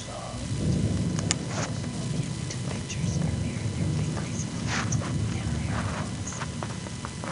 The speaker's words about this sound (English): You can really hear the lightning in the background, though. The thunder was intense.